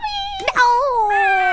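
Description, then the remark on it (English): A person's voice makes a sustained, high-pitched whining squeal imitating a puppy, wavering and sliding slightly downward, with a brief breathy break in the middle before the whine resumes. “Yeah, so it was a lot of that puppy kind noises.”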